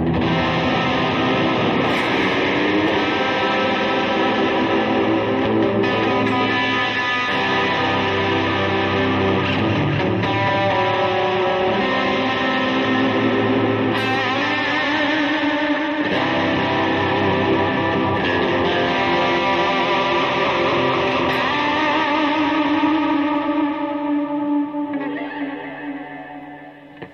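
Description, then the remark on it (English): An electric guitar, a self-assembled Strat fitted with a Vega Trem tremolo, played alone through heavy effects for almost half a minute, with loud, sustained distorted chords washed in reverb and echo, and notes that waver and bend from the tremolo. “By the way, I'm using the Strat that I slapped together with the Vega Trem.”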